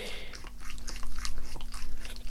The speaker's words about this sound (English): I was in Fresh Air's Philadelphia studio talking with Carrie Fisher, who was in NPR's New York studio, with her dog, who started licking her hand. He's just very nice. Oh my God, nice I hear him licking room. Your hand. Can you hear him? Yes.